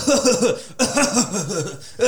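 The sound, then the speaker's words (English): A voice puts on a fake, exaggerated cough, imitating movie characters who escape a fire and fake cough: a rapid string of short, rhythmic hacking bursts in two loud runs separated by a brief pause, with another sputter starting at the end. “So they find their way out and literally fake cough.”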